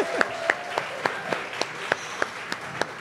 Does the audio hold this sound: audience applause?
yes